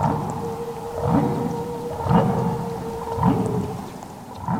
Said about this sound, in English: Or it was followed by this other whale sound.